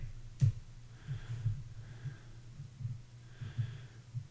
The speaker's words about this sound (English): I'm breathing heavily.